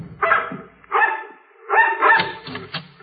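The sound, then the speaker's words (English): A mongrel dog barks at people's heels as they climb a rickety porch in the cold, several short, rough, fairly loud bursts with brief gaps between barks and a busier, overlapping stretch toward the end. “They stared at us while we went up the rickety porch, the dog barking at our heels.”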